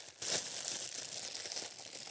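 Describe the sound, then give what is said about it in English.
The plastic packaging of a new rash guard crinkles and rustles continuously, a bright crackly noise starting with a louder burst and then continuing in irregular, fairly loud crackles for about two seconds, with no talking. “They got you your rash guard.”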